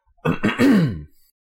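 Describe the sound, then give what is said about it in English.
A loud throat clearing: a couple of rough, gravelly bursts rolling into one drawn-out guttural rasp that drops in pitch, lasting under a second with silence around it. “Well, you're going to have to cut this out because I got to clear my throat all big and nasty.”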